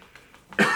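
A single loud, harsh cough bursts out, preceded by a few faint breathy catches, with no talking; the person coughing has bruised ribs from a ski crash.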